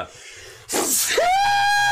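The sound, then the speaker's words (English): A single loud sneeze bursts out after a moment of quiet, a sharp breathy explosion that trails into a sustained, steady high-pitched tone lasting until the end. “Did you just peek it out with that sneeze?”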